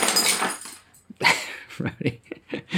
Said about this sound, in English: Go lay down. See, there's my dogs in the office. I'm not lying.